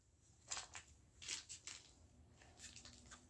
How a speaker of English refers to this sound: You like the way I'm shuffling it to start off with?